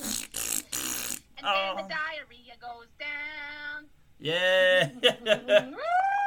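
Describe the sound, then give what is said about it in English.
A voice makes a string of exaggerated fart noises, starting with a few short, harsh buzzy bursts, then drawn-out wavering raspberry sounds, with playful vocal squeaks mixed in. “Farts on the bus, go.”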